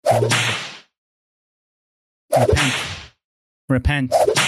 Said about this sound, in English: Where's the whip? Where's the whip?